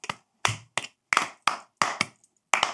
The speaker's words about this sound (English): It's just clapping. That's fine. I like clapping.